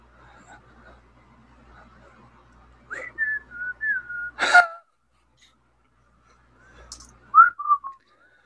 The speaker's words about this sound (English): Well, why are you guys whistling at me?